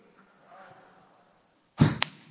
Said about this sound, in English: You people that have hair, it's like a soft landing you've got. When you bald and you slap yourself in the head, it hurts.